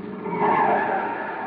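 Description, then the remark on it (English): A car pulls up and screeches to a stop, its tires skidding loudly in a sustained squeal that swells and then holds steady for the whole moment. “Yeah, that must be his car now.”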